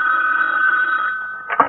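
A telephone bell rings in one steady, sustained burst, fairly loud, then cuts off with a brief clunk at the very end.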